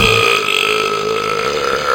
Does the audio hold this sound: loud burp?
yes